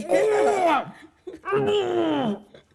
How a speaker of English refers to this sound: Still clearing my throat. Because that's sexy. It's how I get my wife turned on.